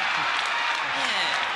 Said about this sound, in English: Hear that? Cheer.